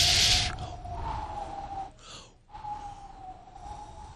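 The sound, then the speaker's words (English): A sharp burst of hiss gives way to a long, steady whistle, made in place of a wind sound effect, that holds one high pitch, rising slightly, breaks off briefly midway, then resumes over a faint airy rush. “You see, it always comes back to a whistle for me.”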